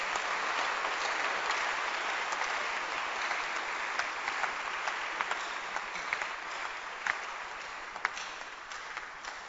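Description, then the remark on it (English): An audience claps for God at a church service, a dense, continuous wash of many hands clapping steadily for several seconds, with a few sharper claps standing out near the end. “Clap your hands for Him.”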